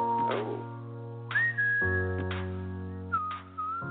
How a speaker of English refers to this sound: A little whistling. Oh boy, the whistling. The whistling.